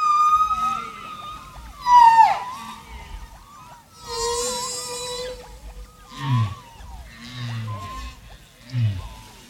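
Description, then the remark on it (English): Humpback whale song: eerie sliding moans, rising whoops and high chirping cries follow one another, then deep swooping groans repeat toward the end, echoing and fairly loud with no one speaking. “The UN greetings on this track are mixed with another sound, humpback whale songs.”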